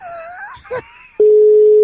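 Warbling, gliding electronic tones give way to a loud, steady telephone line tone that holds on one pitch as a call to Sweden connects, with no voices.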